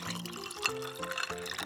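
Tea pours steadily into a cup, a continuous trickling stream whose gurgling tone rises as the cup fills, with no voices.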